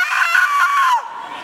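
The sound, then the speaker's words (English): A person imitates the poor crow of their own rooster, letting out one strained, raspy cry that holds a wavering pitch for about a second, then drops and breaks off abruptly. “And our rooster never got his cock-a-doodle-doo very good. Like, some of them are just beautiful. Ours was like, ah!”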